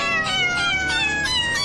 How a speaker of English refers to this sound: And the idea was that one could effectively play an orchestra of pitched feline voices. Now, if you want to refer to your audio guide, you can hear a synthesized version of this with no cats being harmed.